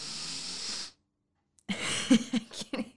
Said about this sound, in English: Please sniffle in there more. That's what people love.